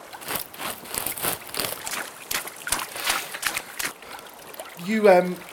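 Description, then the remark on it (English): Irregular splashing and sloshing of water as someone swims at night, when it is not cold, fills the first few seconds, then eases off as a voice briefly speaks at the end. “You like the water then?”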